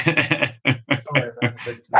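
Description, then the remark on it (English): A voice imitates a dog barking, giving a quick run of about eight loud, rhythmic woofs, each a short throaty burst with brief gaps between them. “Then there was a big bang, and then the dog stopped barking.”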